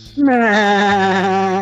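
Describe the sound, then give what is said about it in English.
A person imitates a sheep with one loud, sustained nasal bleat lasting over a second, wavering slightly in pitch, with no other talking. “Yeah, you're just a sheep.”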